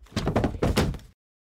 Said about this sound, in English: If that wasn't enough, she made a point to slam the metal gates on the outside windows near the corner table. The sound was so loud it was impossible for the guy not to hear it.